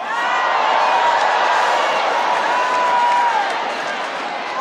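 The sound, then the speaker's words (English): A crowd shouts and cheers continuously, many voices blending into a loud, sustained roar with a few higher whoops rising above it before the noise eases slightly at the end. “I like how you're shouting now.”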